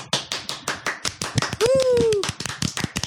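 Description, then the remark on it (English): A soundboard clapping sound effect: a rapid run of crisp, sharp claps in a steady rhythm, like a small crowd applauding, with a voice briefly cheering a rising-falling whoop partway through. “Man, that soundboard sound. That is the best sounding clap I've had, isn't it?”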